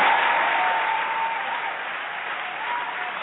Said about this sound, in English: Wow. Cue the applause noise maker. Actually, that gets one of these. That gets one of these because that never really happened.